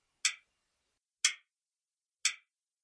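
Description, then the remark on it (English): Three crisp, evenly spaced clock ticks, about one second apart, sharp, with nothing else around them. “Treat it with respect, and your clock just may keep ticking a whole lot longer.”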